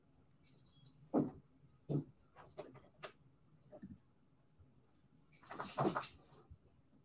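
A dog makes a few short, scattered noises, then a longer rustling burst near the end, fairly faint with no talking.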